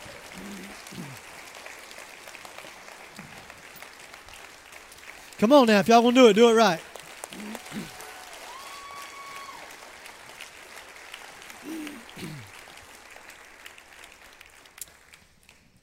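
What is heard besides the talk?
audience applause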